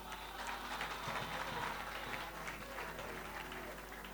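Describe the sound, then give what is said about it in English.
An audience claps for someone who answered a question correctly, in a dense, steady burst of many overlapping hand claps, holding fairly even loudness for about four seconds with no clear voices on top. “Clap for him.”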